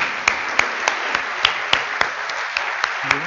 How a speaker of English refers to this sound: And so let's give one big round of applause to our Affirm team who helped lead us here and will keep leading us forward.